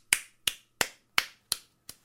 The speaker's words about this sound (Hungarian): Most kell tapsolni